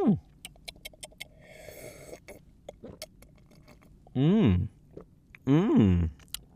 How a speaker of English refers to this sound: Well, let's see how it holds up with a sip.